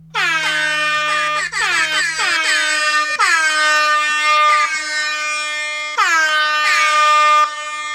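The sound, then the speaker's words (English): Loud, blaring air horn blasts sound in rapid succession, several overlapping honks repeated with a brief low hum at the start, nearly continuous. “Yes, listeners, you have interpreted those air horns correctly.”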